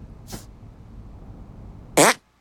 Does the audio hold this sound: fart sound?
yes